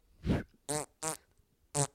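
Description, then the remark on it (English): Four quick fart sounds in a row: a low, breathy puff, then three tonal, squeaky blasts with a whistle-like pitch, fairly loud, with short gaps between them and no talking. “Your first fart was a whistle, and that just says that your butthole is so loose the air just passes.”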